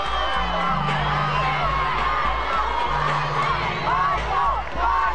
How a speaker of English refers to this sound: The music under the fans' cheering was actually the song